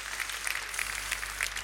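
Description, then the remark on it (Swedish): Audience applause on stage for Norwegian founder Björn Kjos, a steady wash of many hands clapping with no voices over it, fairly soft and even throughout with scattered sharper claps. “Kan vi få en stor applåd för honom?”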